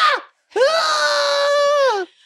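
A woman lets out a short falling cry, then one long, loud, high-pitched orgasmic sex scream that swoops up, holds steady, and drops away at the end. She is alone, with no talking.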